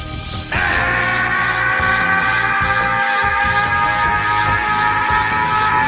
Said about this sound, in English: Yeah, I was just screaming the whole time.